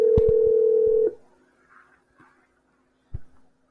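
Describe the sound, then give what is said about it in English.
A loud, steady telephone dial tone hums for about a second as a phone call is placed, punctuated by a couple of sharp clicks, then cuts off into near silence with faint blips and one more click. “waiting for Rick to answer or not answer his phone”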